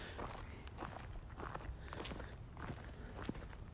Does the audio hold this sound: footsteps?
yes